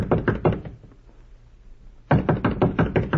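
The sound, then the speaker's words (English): Two rounds of firm knocking on the wooden door of room number 14, a quick volley of several raps, a pause of about a second and a half, then a longer, louder series of knocks. “No, we'll knock first.”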